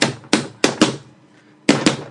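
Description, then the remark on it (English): Loud, heavy thumps bang on a desk about six times, in uneven bursts with a short pause midway, each hit sharp with a brief ringing decay and no voices. “The machines are banging very loudly on a desk.”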